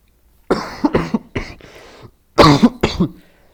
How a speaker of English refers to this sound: Sorry, I'm still have that stupid cough.